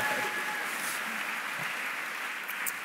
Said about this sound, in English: So big applause to Catherine as well.